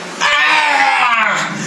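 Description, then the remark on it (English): A voice imitates an imp's scream as it struggles to get out of Rogan's meaty fist, one sustained piercing shriek lasting over a second, loud with a strained, wavering pitch. “He screams, and he's really trying to get out of Rogan's meaty fist now.”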